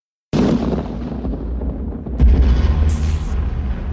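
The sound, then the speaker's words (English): A sudden, loud crack of thunder opens into a deep, sustained rumble, which swells again with a second heavy roll partway through. There are no voices. “It begins with a blast of thunder.”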